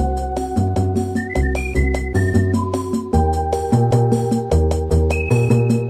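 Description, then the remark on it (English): A whistled melody rides over bouncy shop background music from the game Ajin Tensei 2 Spiral Nemesis, holding long notes that step up and down with a slightly wandering, atonal, off-key feel above a steady plucked bass pattern. “It's interesting how the whistling kind of gets atonal here, you know?”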